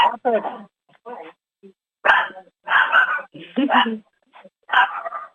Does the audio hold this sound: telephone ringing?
no